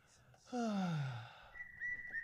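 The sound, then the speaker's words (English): A low, falling vocal groan slides downward, then a thin, steady whistle holds a single high note for just under a second, moderately loud. “Can you just give yourself the whistle already so we can move on?”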